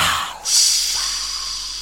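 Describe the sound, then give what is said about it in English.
A voice imitates a cat's small gas emission: a short breathy puff, then a steady hiss that holds for over a second at moderate loudness. No words are spoken. “Or just the sound of an emission of a little bit of gas.”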